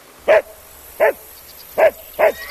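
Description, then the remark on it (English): A dog barks four times in short, sharp bursts, evenly loud, with brief pauses between them and no other sounds around. “A dog's bark?”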